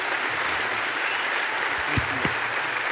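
A church audience applauds to thank a man for his work feeding people in the county, a dense, steady wash of clapping that stays loud for the whole stretch, with a couple of sharper claps and faint voices mixed into the noise.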